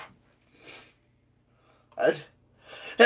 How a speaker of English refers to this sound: That was a sneeze? Wow. That was... That's the first sneeze on air. I don't think it is. That's the second sneeze on air.